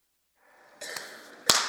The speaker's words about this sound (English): Okay, friends, what am I doing? Blowing my nose.